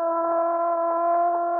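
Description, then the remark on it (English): A prison siren blares in one long, unbroken tone, holding a steady pitch with a buzzy, harmonic edge at constant loudness throughout, with no voices. “What's that? The prison siren”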